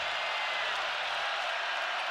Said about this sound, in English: Here comes the crowd at a nearly sold-out Marriott Center. What a crowd tonight. Here in Provo, Friday Night Hoops.